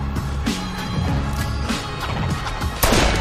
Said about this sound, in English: Was that a gunshot? Yeah, they shot the dealer.